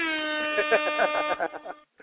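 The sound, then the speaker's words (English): A loud air horn sound effect blares in one sustained, brassy, buzzing blast for nearly two seconds, with a rough pulsing flutter running through it before it cuts off abruptly. “I got to give you three horns on that one right there.”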